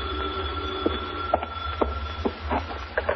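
A telephone rings in a hotel room at night with a steady, insistent tone over a low background hum, punctuated by a few soft clicks and knocks, with no one speaking.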